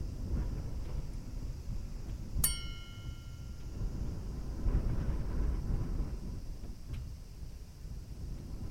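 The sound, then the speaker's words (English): A single bell struck once, its bright ringing tone fading over about a second, with a fainter tap later, all over a steady low rumbling background. “He spent his last days sitting in meditation, ringing a bell occasionally to signal to those outside that he was still alive.”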